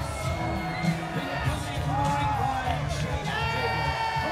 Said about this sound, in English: You can hear the crowd singing along the lyrics to his theme song.